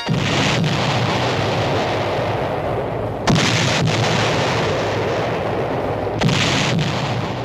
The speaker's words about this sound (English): After a howitzer salute to this soldier statesman, the entire body of cadets stood at attention while Marshall was awarded Virginia's Distinguished Service Medal by Governor John Battle.